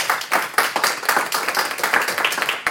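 An audience applauds steadily, a dense patter of many hands clapping at once with crisp, bright transients and no voices over it, sustained evenly for a few seconds.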